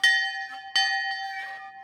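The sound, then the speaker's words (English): A big silver bell, gifted by miners in Jerome and kept outside a castle, rings out twice, each clear strike followed by a long, shimmering sustained tone that fades slowly, fairly loud with no voices. “E.A. brought with him a big silver bell that Tamara said miners in Jerome gifted him”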